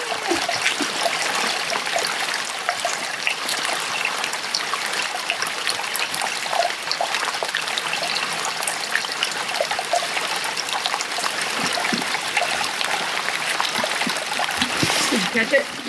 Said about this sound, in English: And just listen. And you can hear the water coming in. You can hear the water. Like, you can hear its arrival. It's like, it's taking its first breath.